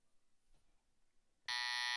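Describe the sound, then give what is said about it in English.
After a stretch of near silence, a loud, harsh electronic buzzer blares abruptly and holds steady at a bright, rasping pitch until the end. “You buzz.”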